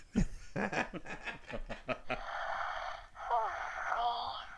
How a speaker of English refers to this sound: It's got that breathing pant.